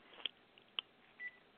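A mobile phone gives off a few short electronic beeps and clicks, then a brief steady tone, all fairly faint against a quiet background with no talking.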